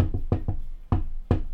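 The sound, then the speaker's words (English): A series of knocks on a door: two quick pairs of raps followed by two single, heavier knocks, fairly loud with no voices. “But what's this? A knock at the door?”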